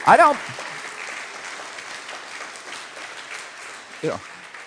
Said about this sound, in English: God bless you. Let's give this man a round of applause.